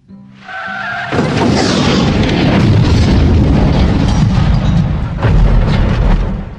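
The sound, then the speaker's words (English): A brief tire screech gives way to a loud car crash and a roaring explosion that rumbles on for several seconds, with a second surge near the end. No voices. “Uncle Pooch died in a car crash 3 months later while he was holidaying in Myrtle Beach.”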